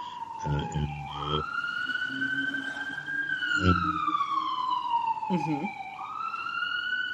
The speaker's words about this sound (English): You have sirens there.